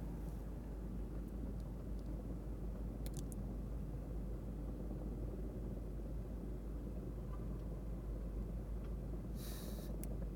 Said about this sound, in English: I hear that helicopter still, but I can't see it.